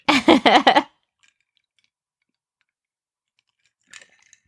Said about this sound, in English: Sorry if you hear ice clinking. I made myself a morning time beverage.